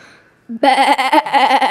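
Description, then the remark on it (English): A person imitates a sheep, letting out a loud, drawn-out bleat with a shaky, wavering tremble that lasts about a second after a brief quiet start. “what is your sheep noise?”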